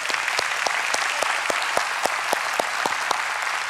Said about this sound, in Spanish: Y creo que todos los papás merecen un fuerte aplauso.